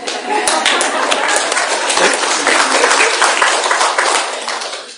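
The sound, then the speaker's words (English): A group of people claps steadily for about five seconds, a dense wash of many overlapping hand claps at even loudness that tapers off briefly at the end. “Yeah, we all want to clap.”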